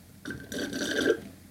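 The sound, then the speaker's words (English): A single gurgling slurp of an iced Americano from Costa sucked through a straw like a Frappuccino straw, about a second long, airy and wet with a thin whistling edge, heard on its own without any talking. “Ooh, slurping on the podcast.”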